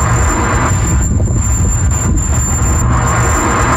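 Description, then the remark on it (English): A car with car trouble drives down the street, its steady low rumble of engine and road noise joined by a continuous high-pitched whine that persists throughout, with no one talking. “has had some car trouble, so I'm going to just play a couple of things for you, and you can see you tell me if you know what's wrong with the car.”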